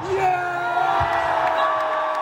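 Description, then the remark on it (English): A huge cricket stadium crowd at a one-day World Cup match between India and Pakistan roars and cheers continuously, a dense, exceptionally partisan wall of voices and whoops with a steady droning tone running through it, loud and unbroken throughout. “The crowd was enormous, exceptionally partisan, and exceptionally loud and enthusiastic.”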